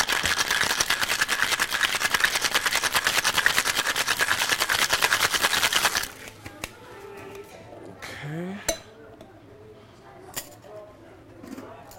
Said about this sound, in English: So I just did a little bit of simple syrup, lime juice, and some gin. Okay. I'm going to give that a nice shake.